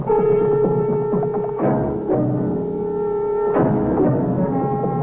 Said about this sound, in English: Ooh, where are they? Where you hear the sound of the drums. Just over that rise.